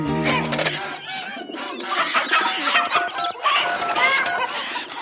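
Three French hens cluck and squawk at once in a busy, overlapping chorus, fairly loud, going on without a break for the whole stretch.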